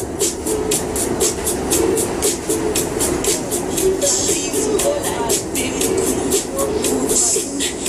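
Steady rumble of a subway car in motion, with rhythmic rattling clicks from the wheels and a constant low drone filling the space, faint murmurs of people underneath, from a video of a man dancing and moonwalking on the subway.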